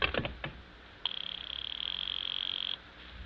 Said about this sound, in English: I'll just ring him on the house phone.